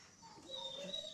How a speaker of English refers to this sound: He's just really the weirdest dog I've ever seen.